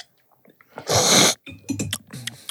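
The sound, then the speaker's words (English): A single loud, airy slurp of coffee during a coffee tasting lasts about half a second, hissy and broad, followed by a few short voiced sounds from a person, like muffled murmurs. “Just imagine you're eating soup as badly as you possibly can.”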